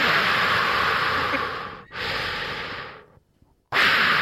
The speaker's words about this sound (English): Can you back up off the mic a little, dude? Right, that's my bad, man. It's just how, you know, just breathing a little heavy.